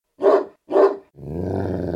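A large dog gives two deep, loud barks, then breaks into a sustained low rumbling growl. No one speaks.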